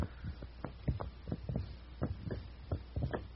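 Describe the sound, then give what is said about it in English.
A loose right shoulder joint being moved makes low, muffled thuds that repeat in an uneven heartbeat-like rhythm, a dozen or so soft knocks over a steady background hum, with no talking. “I hear a sound that is almost like a heartbeat.”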